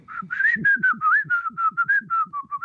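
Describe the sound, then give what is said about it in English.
Someone whistles a bouncy, familiar tune, a steady string of clear pitched notes that glide up and down in a sing-song melody, close and fairly loud, with no talking. “he'd kind of whistle that song from, what is it, from The Wizard of Oz, you know, …”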